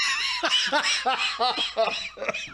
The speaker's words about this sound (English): I'm going to cough myself to death.